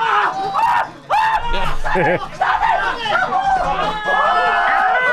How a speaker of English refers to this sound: They tased him. It sounded kind of like this.